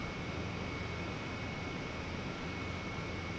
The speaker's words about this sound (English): We're gonna go to our brew house, And you can really hear the HVAC system now starting to work. It's getting a lot louder.